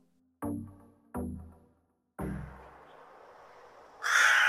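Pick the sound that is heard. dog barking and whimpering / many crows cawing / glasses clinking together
many crows cawing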